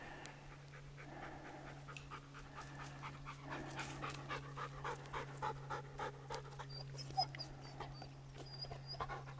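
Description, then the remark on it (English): A dog pants rapidly and steadily during a rest break at a clearing near the top of a hiking trail, quick rhythmic breaths continuing throughout over a constant low background hum, with no talking. “On the map, it looks close to the halfway point, but there's like a clearing here that looks like the perfect place to kind of take a break, take a drink, get a control of my dog.”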